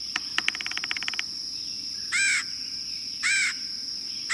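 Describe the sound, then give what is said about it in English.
A red-headed woodpecker gives two loud, harsh, burry calls about a second apart, after a quick rattling series of taps, over a steady high insect drone. “There are ways we can help the red-headed woodpecker.”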